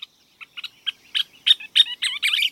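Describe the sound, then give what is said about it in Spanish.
A scissor-tailed flycatcher, a United States bird migrating north to nest in the open country of Texas and Oklahoma, calls: a few sharp, scattered chips that quicken into a rapid, excited run of squeaky, chattering notes, with no voices present. “Esta es una de las aves más difíciles de olvidar de Estados Unidos, una tijereta rosada.”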